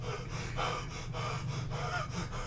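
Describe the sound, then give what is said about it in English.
A person launches up, breathing heavily with sharp, rapid gasps, fairly loud, repeating in a quick rhythm of about five or six breaths over a few seconds with no talking. “And you freaking launch up, breathing heavy.”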